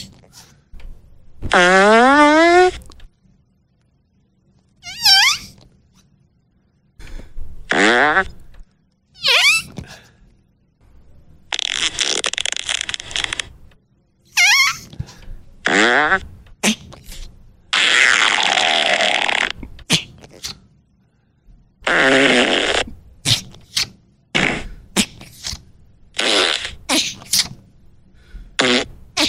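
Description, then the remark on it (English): A rapid string of loud, synthetic fart sound effects, some long and warbling with sliding pitch, others short bursts, played back to back with brief gaps and no talking. “Oh, you telling me my fart bag wasn't as good as that?”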